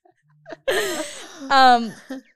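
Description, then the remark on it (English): A person lets out a long, drawn-out yawn, rising into a loud stretched vowel before trailing off, with a brief breathy sound just after. “…'s yawning with like tears in her eyes.”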